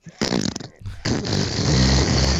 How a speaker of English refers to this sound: Just need a big old fart sound for that.